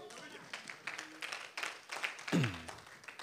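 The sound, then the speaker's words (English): An audience, being seated, claps together unto the Lord in a steady, moderately loud patter of many hands, with a voice briefly calling out partway through. “You all may be seated as you give a clap unto the Lord.”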